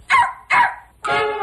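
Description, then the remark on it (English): A dog named George barks three times in quick succession, loud, with the third bark drawn out longer than the first two. No other sounds accompany it. “The next day, his mother made him 27 peanut butter sandwiches and packed them in a suitcase with his good sweater and a clean shirt, and she put in his dog named George, too.”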